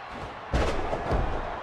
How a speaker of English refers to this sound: The next big thing, Brock Lesnar, as he suplexes Bret back into the ring from the apron with ease.